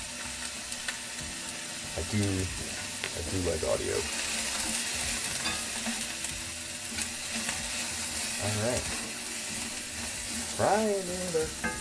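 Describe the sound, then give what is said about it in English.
Steady sizzling of food frying in a pan, a continuous crackling hiss throughout, with a person speaking briefly over it a few times. “Frying it up.”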